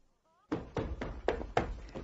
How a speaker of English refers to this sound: By the time I reached the upstairs landing, he was already subjecting the bathroom door to a vigorous hammering.